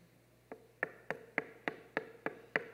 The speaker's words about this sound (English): Now, the word knock means to rap on a door, just like this, to rap on a door.